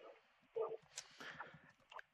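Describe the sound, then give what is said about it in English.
A dog lets out a single short, sharp bark near the start, followed by quieter indistinct background sounds and a faint, brief noise near the end. “That's not my dog.”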